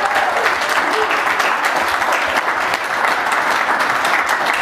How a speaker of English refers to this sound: One of the things I wanted to highlight first was our 8 new core committers, both the core and themes. So let's do a round of applause.